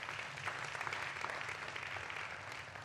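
A crowd on a campus applauds steadily, many hands clapping in a dense, even patter that holds at a constant loudness for about three seconds without anyone speaking.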